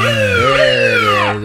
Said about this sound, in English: You need to play the siren, is what you should have played right there.